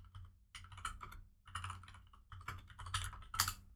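Rapid typing on a computer keyboard, searching eBay for Slava travel clocks, with bursts of clicky keystrokes in uneven clusters and a brief pause between flurries, fairly quiet over a low steady hum, with no voices.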